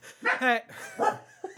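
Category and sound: animal, dog barking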